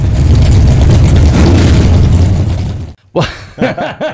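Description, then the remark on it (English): A Volvo 240 car engine rumbles loudly and steadily for about three seconds with a deep, rough low end, then cuts off abruptly, followed by a few short voiced sounds. “It's my Volvo. It's your Volvo. My Volvo 240.”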